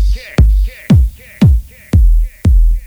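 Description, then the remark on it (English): Six punchy, booming kick drum beats land at a steady pulse about twice a second during a sound system check, each a sharp thump with a deep, quickly fading low tail, played alone with no voices. “Kicks.”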